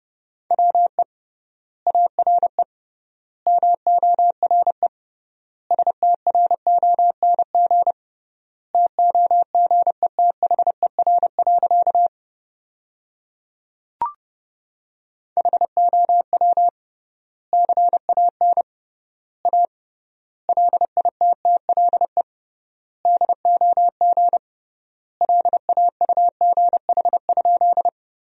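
Rapid Morse code at 30 words per minute, sending sentences built from the top 500 words with triple word spacing: a single steady mid-pitched tone keyed into quick dots and dashes, grouped into words with clear pauses between them, plus one brief click midway.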